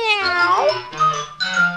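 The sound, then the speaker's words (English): A cat meows loudly, a long rising-and-falling yowl followed by two shorter meows in quick succession, with no talking. “Once there was a very poor boy whose name was Dick Whittington, and he was all alone in the world except for one friend. His faithful cat, Ripple Dee Dee.”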